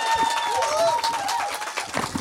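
An audience applauds, a dense wash of steady clapping lasting a couple of seconds, with voices and a few cheering tones mixed into the noise.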